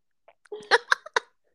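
Crunchy chewing of an apple cut into very small pieces, a handful of short, irregular crunches over about a second, fairly loud and with no talking.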